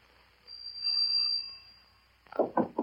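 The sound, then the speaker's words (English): An old telephone bell mounted on a second-floor wall rings with a loud, high, sustained metallic tone for about two seconds, swelling and then fading, before a voice begins speaking. “It was put on a wall on the second floor, where everybody could hear its loud bell from the first.”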